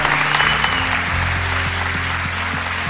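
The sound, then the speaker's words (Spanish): A church audience breaks into steady, sustained applause for the Lord after a prayer, dense clapping filling the whole span, with a low sustained musical tone and organ-like bass notes underneath. “Usted le da unas palmas al Señor grandes.”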